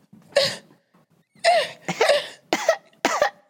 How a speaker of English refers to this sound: She was awakened by the sound of her daughter coughing.